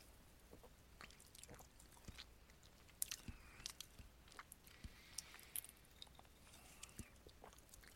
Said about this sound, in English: All right, there we go. Crack it open there. Oh yeah, there's that nice blue smell right there. So if you have one on hand, crack it open and cheers to you guys out there. Let's give it a sip.